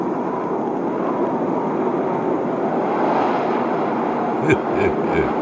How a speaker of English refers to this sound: It could sound like that, I'll tell you that. This week's storm, it's on the way. It's a-coming.